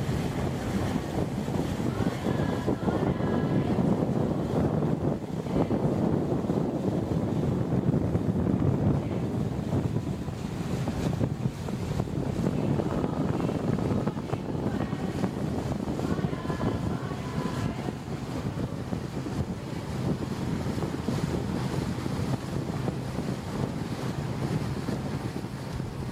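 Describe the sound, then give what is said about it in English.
A boat moves along the Amazon river with a steady engine rumble, water rushing and splashing against the hull, and gusty wind buffeting the microphone throughout at a constant, fairly loud level. “But even better, why not come and help us with an Amazon boat trip?”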